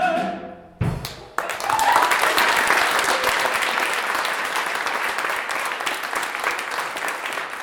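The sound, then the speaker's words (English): A large audience bursts into thunderous applause with a few cheers: a dense, steady roar of clapping that stays loud for several seconds after a brief tonal sound at the start. “But on that night, the audience told him with their thunderous applause and cheers that every step he has taken so far in his journey has been worth it.”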